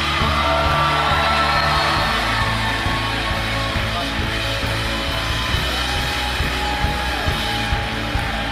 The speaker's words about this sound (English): I want y'all to show him some venue love. Stand up on your feet. I want you to honor him, cheer, shout. Shout him down when he preaches.